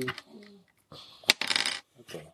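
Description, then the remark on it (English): A handful of dice clatters and rattles across a hard tabletop, with a sharp click followed by a dense burst of tumbling, then a few softer knocks as they settle. “That's a lot of dice.”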